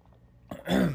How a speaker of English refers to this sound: I hate my throat. Yes, I hate it so much. All right, hold on, water sip.